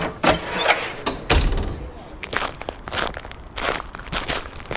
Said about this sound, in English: I follow, shuffling awkwardly between the tables on my crutch. I'm still getting used to using it.